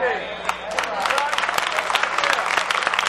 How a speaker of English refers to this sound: Oh, I don't see a lot of hand claps back there. I'm going to have to take a walk back there. I want y'all involved too.